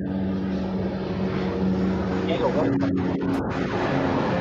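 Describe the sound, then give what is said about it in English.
A steady, loud droning rumble of a hovering army helicopter, its low engine hum and rotor noise holding constant throughout, with a faint voice briefly audible beneath it. “So you have to army helicopter hovering above.”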